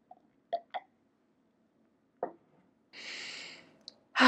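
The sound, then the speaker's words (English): A few short, wet slurping clicks from sipping a drink, then a steady hissing inhale lasting under a second, ending in a sudden louder burst of breath. No one speaks. “Okay, I'm going to breathe in and take another sip of my drink.”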